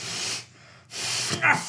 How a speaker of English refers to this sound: Finish blowing your nose.